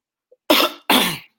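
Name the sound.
coughing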